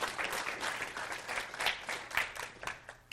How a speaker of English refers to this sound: Yeah, if you want to give a round of applause, feel free.